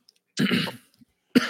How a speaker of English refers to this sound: Sorry, a little cough there.